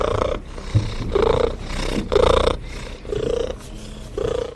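A cat's solicitation purr in steady, rhythmic pulses, with a whiny, high-frequency cry-like tone, near the frequency of a cat cry and a baby cry, riding on top of each breath. There is no talking and no other sound.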